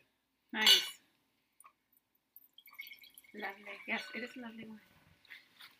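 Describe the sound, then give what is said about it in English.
A sharp glassy clink, then after a pause Apothic Red winemakers blend red wine glugs and splashes into a glass for a couple of seconds, the pitch rising as it fills, fairly quiet. “We're going to pour a glass of wine for Silent Peter.”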